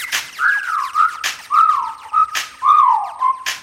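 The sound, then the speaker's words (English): A person whistles at a woman, a short wavy melody three times in a row, each phrase sliding up and down, with sharp percussive cracks landing between the phrases like a beat. “Okay, time to whistle at her.”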